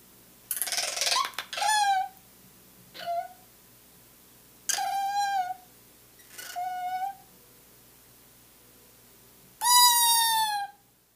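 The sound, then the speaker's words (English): An eastern screech owl gives a harsh, raspy screech call, then a chuckle rattle of five shorter quavering, wavering calls with pauses between them. The calls are fairly loud, with no other sounds. “That call is labeled on the album as screech call and chuckle rattle.”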